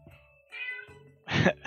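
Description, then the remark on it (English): A cat meows loudly and insistently, several harmonic yowls in quick succession, the last ones louder and rising, with no talking. “My cat's going nuts”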